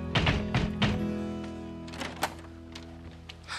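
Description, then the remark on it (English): A man gives three firm, evenly spaced knocks on a wooden door, followed by a pause and a few softer thuds and clatters as a maid opens it. “Either way, he knocks on the door and a maid opens it.”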